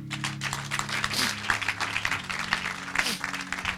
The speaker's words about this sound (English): Somebody give a clap offering to women.